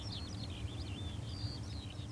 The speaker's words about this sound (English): I walked along the white cliffs, which overlook the cars and ferries heading off to France. Among the hustle and bustle of Sunday walkers, I hear birdsong. Seagulls, a great tit, a skylark.